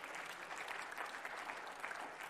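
A church audience gives a clap offering to the Lord during a sermon: steady, dense applause, a continuous crackle of many hands clapping at a fairly even loudness with no voices standing out.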